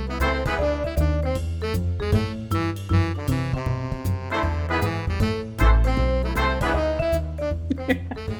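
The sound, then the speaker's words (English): An upbeat instrumental theme tune plays steadily, with a bouncy bass line, rhythmic drum hits and bright melodic chords, loud and continuous with no voices over it. “Our music is … by …, and it sounds like this.”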